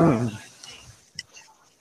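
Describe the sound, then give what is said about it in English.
A person gives a single short vocal bark imitating a dog, followed by near-silence and a faint brief click. “Ambient barking noises.”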